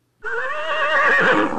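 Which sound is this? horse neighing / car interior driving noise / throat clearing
horse neighing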